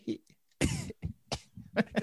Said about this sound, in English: And he does his little cough.